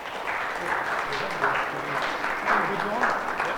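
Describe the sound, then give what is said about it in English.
A crowd applauds with steady, dense clapping that holds at an even level throughout, a broad hiss of many hands with no single claps standing out. “So, let's give these guys a big round of applause.”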